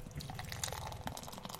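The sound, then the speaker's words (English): Golden ale glugs and splashes as it is poured steadily into a glass, a continuous liquid gurgle with bubbly fizz lasting a second or two. “All right, here we go. Pour.”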